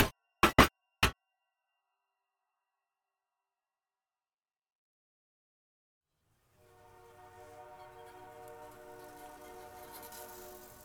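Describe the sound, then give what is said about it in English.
A few sharp clicks, a long silence, then a train whistle sounds faintly from far off, a steady, rich, horn-like tone that carries on to the end. It is the L14 whistle signalling a level crossing: long, long, short, long. “Eventually, in the far distance, we hear the L14 whistle, the signal for a level crossing, long, long, short, long.”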